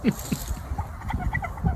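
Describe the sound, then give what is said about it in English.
A cluster of turkeys gobbling and clucking, a busy run of short, warbling calls overlapping one another across the whole stretch with no pause. “interview some turkeys for the Thanksgiving episode, acting like they were in the movie.”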